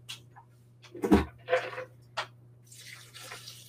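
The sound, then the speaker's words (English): Water splashes and trickles into a blender holding a bag of organic cashews, starting after a few knocks and clunks, then settling into a steady soft pour, covering the cashews about halfway, to make a cheese sauce. No one speaks. “Adding a decent amount of water. I haven't completely covered the cashews with water, but maybe halfway.”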